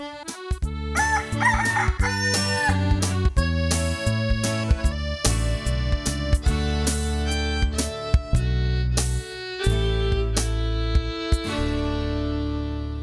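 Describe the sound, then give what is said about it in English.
A big white cockerel crows once early on, a drawn-out cock-a-doodle-doo laid over steady background music with bright plucked accents that continue to the end. “But perhaps it was the big white cockerel.”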